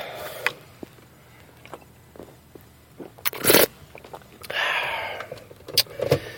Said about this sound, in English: Excuse me. I want to take a sip of my sweet tea